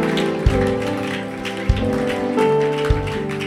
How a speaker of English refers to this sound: Somebody put your hands together for the Lord. Oh, I can hear your clap.